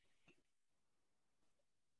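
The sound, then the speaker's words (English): Voice-call audio freezes and drops out: no voice, just a faint hiss of digital noise broken by two brief glitchy blips and a short dead gap. “You got froze there.”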